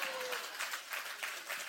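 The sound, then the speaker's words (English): An audience claps steadily, a dense wash of many hands with soft rhythmic swells recurring every third of a second or so, sustained at an even level throughout. “Come on, if you're going to clap, give him a good hand clap.”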